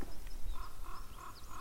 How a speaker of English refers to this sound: This sounds like a raven.